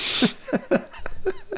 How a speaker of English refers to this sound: Yeah. It's weird, too. Like, why does he keep... He's like mouth breathing or something.